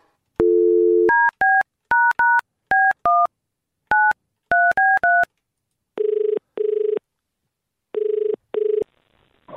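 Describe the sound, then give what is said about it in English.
A short low tone, then about a dozen quick dual-pitched touch-tone beeps in an uneven rhythm, followed by paired buzzing ring tones repeating at a steady pace, with no voices. “Let's give him a buzz, shall we?”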